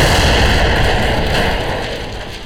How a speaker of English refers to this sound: You all hear an explosion from upstairs.